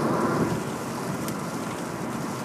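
Steady rain falls in an even, continuous hiss with a faint low rumble of distant thunder underneath. No voices; the downpour holds at a constant level throughout.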